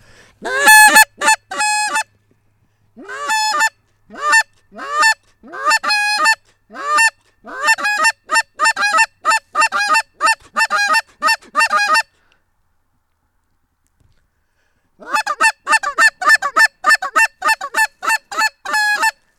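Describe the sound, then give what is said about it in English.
A line of geese honking in flight, loud, with rapid overlapping calls that keep up for several seconds, break off briefly, then resume just as busily. No one speaks. “There, line of geese right there.”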